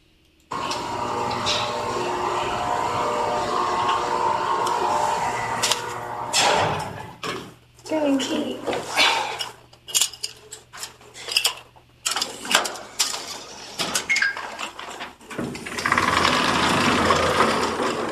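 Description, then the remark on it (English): An elevator runs with a steady low mechanical drone, broken in the middle by bursts of clanks, knocks and rattles before the even whirring hum returns. No one speaks. “You can hear the elevator running.”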